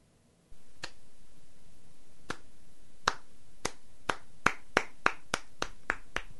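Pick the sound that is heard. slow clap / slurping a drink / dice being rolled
slow clap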